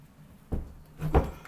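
A closet door, sticking from humidity, is pushed shut in two efforts: a first dull bump, then a harder, louder thud as it finally closes, with a brief scrape between. No talking.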